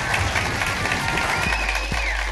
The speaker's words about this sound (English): Ladies and gentlemen, give him a massive round of applause.